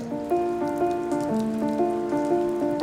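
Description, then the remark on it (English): Heavy rain patters steadily on hard surfaces throughout, continuous, while sustained musical tones shift pitch over it; no one speaks. “We're standing here in crazy rain right now. Like, it's already starting to rain.”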